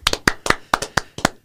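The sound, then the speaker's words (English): A short burst of hand clapping, about nine sharp, crisp claps in a slightly uneven rhythm, sounding like just one or two people applauding, with no voices. “First of all, round of applause for Delaware.”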